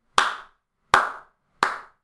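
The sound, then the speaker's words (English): A slow, deliberate round of applause from a single pair of hands, given as a reaction to WWE's choice of main event for Extreme Rules: three sharp, loud claps spaced evenly about three-quarters of a second apart, each fading quickly, with no voices. “That's called a round of applause for WWE finally making the decision that makes sense, putting arguably the two best workers in the industry today on the main event where they belong.”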